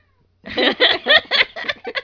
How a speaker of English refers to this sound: You're upsetting the cats.